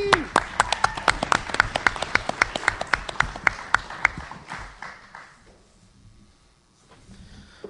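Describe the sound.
A small audience claps in a quick, uneven patter of sharp hand claps that gradually thins out and fades after about five seconds, with faint voices murmuring underneath.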